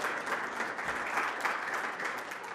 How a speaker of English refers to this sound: I think she deserves some applause for that. That was bold.